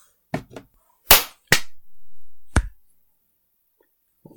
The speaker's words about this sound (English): Clap to sync audio.